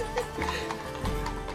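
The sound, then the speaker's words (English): Horse hooves clip-clopping at a steady walking pace as the horse proudly steps forward with head and tail up, clear, with a few distinct hoof strikes over a continuous low background hum. “He's got his head up, his tail up, and he's just very proudly clip-clopping forward.”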